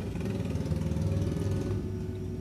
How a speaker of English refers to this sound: my gosh, another motorcycle. I just wait that out.